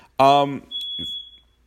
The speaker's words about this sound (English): First of all, I need to do something about that fire alarm that keeps going beep, beep.